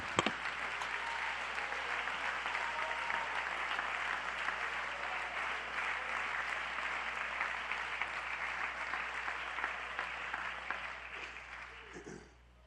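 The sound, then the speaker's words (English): A church audience claps their hands to God once seated, steadily for about twelve seconds, a dense, continuous wash of many hands that holds a fairly even loudness before trailing off abruptly at the end. “Find your place, then clap your hands and shout to God when you're seated.”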